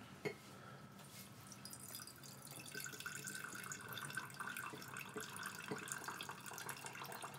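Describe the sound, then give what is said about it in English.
Water is swirled with rice grains in a bowl to rinse them, turning the water milky: a steady wet churning with small splashes and patters that carries on evenly throughout, with no voices. “There's some rice and some water, and now it's all milky.”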